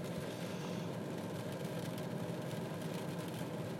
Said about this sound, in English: You know, I should just record this in my car. I mean, I am recording in my car, but I feel a lot more honest and open, and, you know, more real when I'm just sitting in my car. This old baby's seen through a lot.